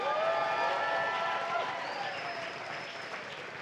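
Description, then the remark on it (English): A church audience claps and shouts together in praise of the Lord, a dense, steady wash of applause with raised voices and whoops rising through it, loud throughout and tapering slightly toward the end. “Somebody give the Lord a clap and a shout.”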